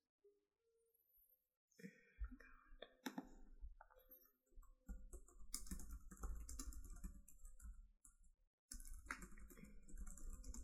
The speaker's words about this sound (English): Just furious typing.